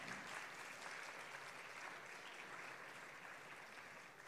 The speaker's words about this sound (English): And as they're coming up, let's give them a warm applause.